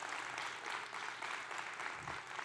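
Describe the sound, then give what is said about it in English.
An audience breaks into steady applause for the birth of a grandbaby in Ava, Missouri, a dense, continuous wash of many hands clapping at an even loudness for a couple of seconds, with no voices standing out. “Yeah, give a round of applause.”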